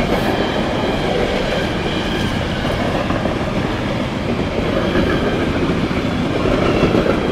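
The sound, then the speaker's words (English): A freight train rumbles past, a steady, loud roar of wheels and rail noise with a faint clickety-clack running through it for the whole stretch, no voices. It is an industrial train from Germany loaded with sea containers, some marked China Shipping, going straight to the harbor in Rotterdam. “It's an industrial train from Germany.”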